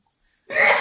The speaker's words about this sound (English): Bless you.